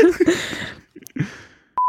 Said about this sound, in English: I'll probably beep it because I think beeps are funny, especially when you say something like c**t.